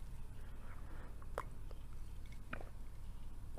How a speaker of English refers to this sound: Let me sip my tea for a second, my ginger tea.